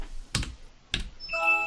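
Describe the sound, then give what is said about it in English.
Two sharp key clicks on a computer keyboard about half a second apart, followed by a brief bright electronic chime ringing out at the end. No one speaks. “Now I can just call it up with my keyboard.”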